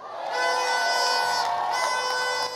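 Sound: church audience shouting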